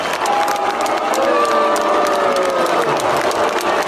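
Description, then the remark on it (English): A large crowd at a stadium commencement ceremony boos steadily for about four seconds as Pence is introduced. Drawn-out wavering boos rise and fall over a dense, loud wash of crowd noise with scattered claps, and no clear speech. “You guys hear the booing?”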